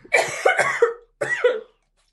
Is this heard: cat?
no